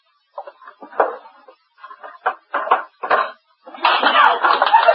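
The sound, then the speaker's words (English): Several solid knocks of guns being dropped into a wooden drawer, in uneven bursts, ending with a longer clattering rattle as the drawer is handled. “Throw them in a drawer, Chester.”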